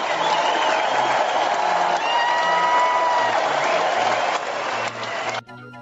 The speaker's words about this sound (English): You two men on the front row, please come forward to the stage. A big round of applause!